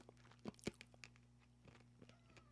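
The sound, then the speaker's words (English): Crisp crunching of a small, hard Tic Tac mint with the Coca-Cola logo being bitten into: two sharp bites near the start, followed by softer, scattered chewing crunches over a faint steady hum, with no talking. “Do I crunch into it?”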